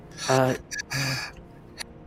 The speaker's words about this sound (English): Yeah, and it turns out it's called the Buteyko breathing technique. And it helps me survive and walk long distances.